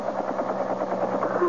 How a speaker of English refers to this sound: It's a helicopter, so what? I think it's coming in here. Yeah, could be. It is. Looks like it's going to land in the parking lot.